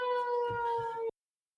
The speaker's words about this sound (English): That's the 6 questions remaining alarm. Sounds like a fucking elephant.